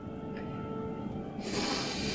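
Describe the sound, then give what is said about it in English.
A loud, exaggerated sniff drawn in to the mic, starting muffled and then bursting into a sharp, airy inhale that fills the second half. “I sniff and cast Detect Magic.”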